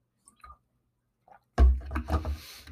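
person drinking water

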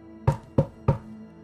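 knocking on a door

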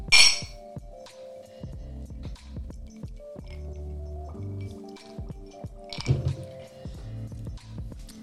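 glasses clinking

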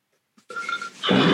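burp

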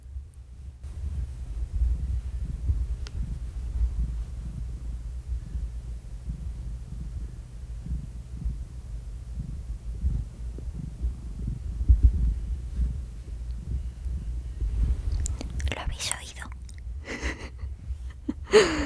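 cat purring

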